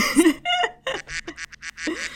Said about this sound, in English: And there's a duck. There's a duck quack.